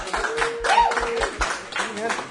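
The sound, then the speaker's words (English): An audience applauds to thank a participant for taking part, with clapping that falls into a steady, rhythmic beat of sharp strikes, mixed with voices calling out underneath. “Can we round of applause?”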